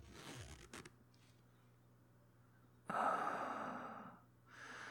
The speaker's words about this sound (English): Let me put myself back inside here. Now, you zip me up.